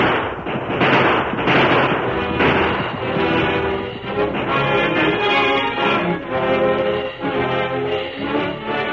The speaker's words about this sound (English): The sheriff and his posse were nearing the woods that concealed the camp when the outlaws started to shoot it out. The roar of gunfire put fresh heart into the men, and there's shooting going on ahead.